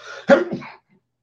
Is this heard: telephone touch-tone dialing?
no